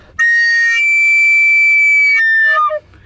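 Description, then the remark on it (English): A recorder blasts one shrill, piercing note for about two seconds, then wobbles and slides down through a couple of squawky, off-pitch blips before cutting out. Badly played, with no talking. “Why is it called a recorder?”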